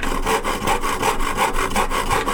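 A hand saw cuts through wood in steady back-and-forth strokes, about six rasping passes with a regular rhythm, loud and bright with no voices.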